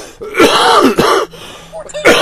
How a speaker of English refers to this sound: Okay, I'm still getting over my cold. Excuse the coughing. I'll hit the cough button from now on if I can.